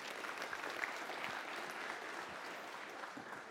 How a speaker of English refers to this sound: Guys, thank you. Can we give them some applause for coming up?